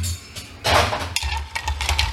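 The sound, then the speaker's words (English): A bar spoon stirs ice in a mixing glass while making a cold brew coffee cocktail, giving a steady run of light clinks and rattles with a louder, washy swirl partway through. No one speaks. “And we are going to give that a good stir.”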